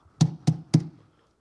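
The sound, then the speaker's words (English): Three firm knocks on a wooden house door, evenly spaced, each with a solid low thud and a short ring-out, followed by silence. “He says, who's banging on the door?”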